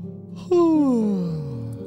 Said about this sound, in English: The merkids yawn.